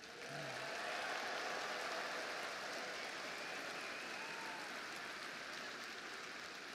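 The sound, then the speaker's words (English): A large audience applauds students who won state competitions, a steady dense wash of applause holding at an even, fairly loud level for several seconds without any talking over it. “Let's give all these remarkable students a round of applause.”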